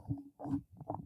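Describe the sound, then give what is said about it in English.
A dog barks three times in quick succession at the front door, muffled, with no one talking over it. “My dog is barking at my front door.”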